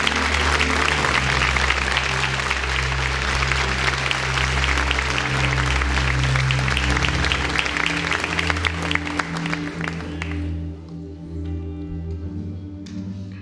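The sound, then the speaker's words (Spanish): A church audience, standing, breaks into loud, sustained applause to God for about ten seconds, dense clapping over a low, steady organ or keyboard drone, before the clapping fades and the music carries on alone. “Vamos, dale un aplauso fuerte a nuestro Dios.”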